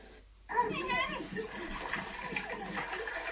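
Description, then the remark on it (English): Two young children splash and play in the shallow water of a wadi, a dirty seasonal river, in Chad; a steady wash of splashing that starts abruptly and continues throughout, with excited young voices calling out over it. “It's only very shallow water, but I'm sure you can imagine the joy and fun that the two young kids are having, splashing around in that dirty waddy river together.”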